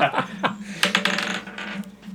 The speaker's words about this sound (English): If my one dice bumped into my other dice and changed it to a better result, can I